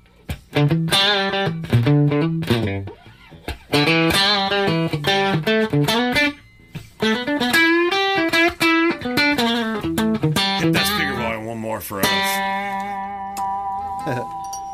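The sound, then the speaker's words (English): An electric guitar played through a Petty John overdrive pedal with mild overdrive plays a run of chords and picked notes, loud, with short pauses between phrases, ending on a long sustained chord. “So I'm hearing a little bit less hair from the Petty John.”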